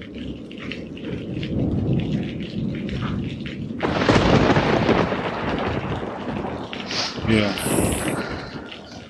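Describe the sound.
Heavy rain pours down steadily under a deep rolling rumble of thunder, which surges into a loud, crashing burst partway through; a faint, indistinct voice briefly rises near the end.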